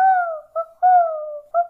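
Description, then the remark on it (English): An owl hoots four times in the pitch-black dark under a thick canopy of trees, alternating long, slightly falling hoots with short clipped ones, each a clear, steady mid-pitched tone with no voices around it. “They both stopped short when an owl hooted.”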